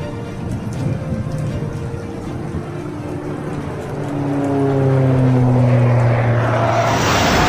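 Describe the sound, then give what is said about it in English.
A steady rumbling engine roar with droning tones that climb in pitch as it grows louder halfway through, like a propeller aircraft revving up; no voices. “I'm boarding the plane now.”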